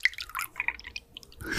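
A drink pours into a glass, with bright splashing and dripping bursts over about a second and a half, no voices.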